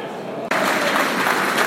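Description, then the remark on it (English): A low crowd murmur gives way abruptly to loud, sustained stadium applause at the Shea, a minute's applause for John Sinnott in the 25th minute of a football match; a dense, steady wash of clapping that holds at an even level to the end. “So just a minute's applause now for John Sinnott.”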